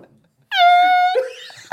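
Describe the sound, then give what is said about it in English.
Someone vocally imitates a dying air horn running out of air: a single loud, buzzy, steady-pitched honk lasting about half a second, then it sputters off into a breathy, wavering rasp. “It's like the end of an air horn when there's not enough air in there.”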